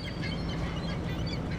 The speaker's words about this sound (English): The gulls do not like me walking through their space.